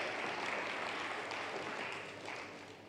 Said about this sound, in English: Give them a clap. They've done an amazing job.